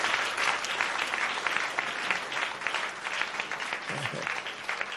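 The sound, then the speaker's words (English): A church audience claps halfway through a sermon, in a dense, steady wash of applause, many hands at once, fairly loud and sustained without a clear rhythm, with a faint voice briefly surfacing underneath. “If you are not ready to serve God, why are you clapping halfway? Is this a clap offering?”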